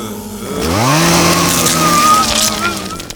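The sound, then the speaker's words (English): A chainsaw engine revs up sharply and holds a loud, steady buzzing whine for a few seconds, wavering slightly before easing off near the end. “But our chainsaws don't just meet your pandemic needs.”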